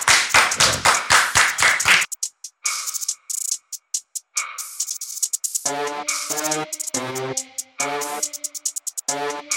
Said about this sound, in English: Just like that, we're back. Clap it up for Broken Play.